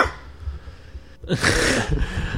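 A low rumbling background gives way to a sudden loud, hissing sneeze that bursts out sharply, followed by a shorter breathy tail. No one speaks.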